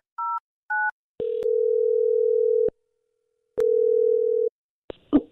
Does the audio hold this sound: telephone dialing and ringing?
yes